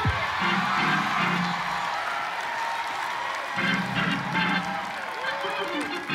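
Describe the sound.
A crowd claps politely and steadily, a dense, even patter of hands that never builds to a roar, while a voice carries over the top of it.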